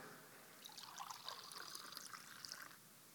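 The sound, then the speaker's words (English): Wine trickles steadily into a cup for about two seconds, a soft, bubbling pour with a gentle splashing texture, then stops. No one speaks. “In the same way, he took the wine and a cup, and he poured it out.”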